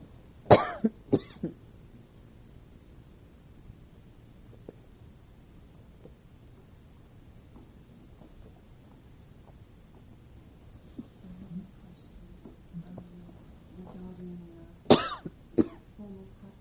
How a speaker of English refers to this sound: I was told by your abbot to stop when I got hoarse. I'm starting to cough, so I'm going to stop.